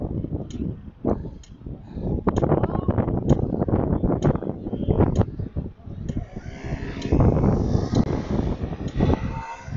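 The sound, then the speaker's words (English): Heavy wind buffets the microphone in a constant low, roaring rumble with gusty surges, mostly drowning out a muffled voice speaking underneath. “I doubt that you guys can hear me since it's extremely windy.”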